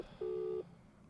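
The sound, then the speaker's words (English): A single steady electronic tone of an outgoing WhatsApp call ringing, sounding once for under half a second before cutting off, clear and moderately loud over a quiet background hum. “Let me phone his WhatsApp.”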